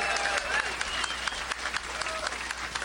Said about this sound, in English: And we have another first-timer on the show. Everybody give it up for Adam Ferrara. Let's hear it for him.